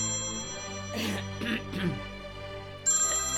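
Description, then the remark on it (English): A telephone rings with a steady electronic tone, interrupted by a few soft rustling bursts, then the ringing continues, clear. “has just dropped off to sleep when the phone rings.”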